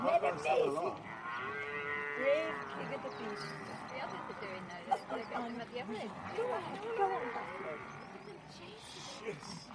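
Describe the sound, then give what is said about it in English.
A herd of water buffalo lowing and bellowing as they defend a calf from a lion, several deep, drawn-out calls overlapping almost continuously, with a busy, agitated mix of animal noise and faint murmured voices underneath. “These water buffalo are not giving up on this baby.”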